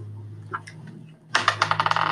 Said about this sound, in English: Okay, roll your dice.